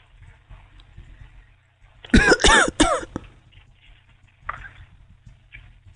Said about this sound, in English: Why are you coughing?